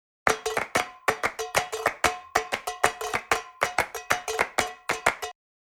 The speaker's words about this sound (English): The introduction to this song is a tuna tin, a can that I'm banging on with two knives, as well as a group clapping rhythm.